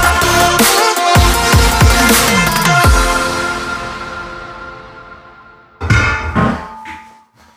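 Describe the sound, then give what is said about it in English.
A water bottle gets kicked over and over, a quick run of hollow, ringing clunks that trail off into a resonant hum, then two more knocks near the end. Fairly loud, no talking. “What was all the banging going on in there? Yeah, I kept kicking my water bottle.”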